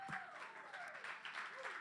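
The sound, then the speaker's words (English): A church audience claps their hands as a hand clap for Jesus, a dense, steady round of applause that fills the space, with scattered voices calling out above it. “Can we just give a hand clap for Jesus?”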